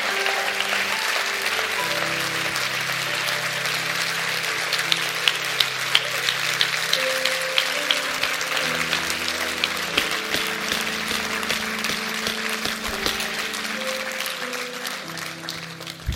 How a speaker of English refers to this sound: Why don't you clap your hands all over the house one big time tonight?